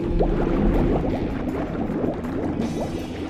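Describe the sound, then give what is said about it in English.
Water rushes and gurgles steadily into a submarine's exit chamber, a continuous churning fill with bubbling, sloshing texture and a low rumbling undertone, fairly loud, with no voices. “Filling exit chamber with water.”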